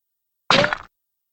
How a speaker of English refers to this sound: I did not find the walking sound effect, which is a bummer, but I did find two sound effects that I thought were interesting. I've heard this one might be the one for a bullet passing through somebody.